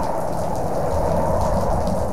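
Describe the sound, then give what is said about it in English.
Steady, heavy rain pours down with a deep low rumble underneath, like a thunderstorm in full force. The dense wash of sound stays loud and constant, with no voices. “And there came flashes of lightning, rumblings, peals of thunder, an earthquake, and a great hailstorm.”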